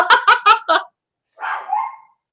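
A tiny dog fires off four quick, sharp yappy barks in a row, pauses, then lets out a longer whiny, strained bark-whimper, loud with no talking.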